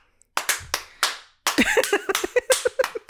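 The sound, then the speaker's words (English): Sharp hand claps ring out as someone tries to kill gnats in an apartment bathroom, first a few spaced apart, then a rapid, irregular flurry of many claps, with no voices. “Like I was, it just like tons of clapping, and it must have sounded like I was having, I don't know, some like audience interaction in my bathroom, but it was just me trying to kill these little like gnats.”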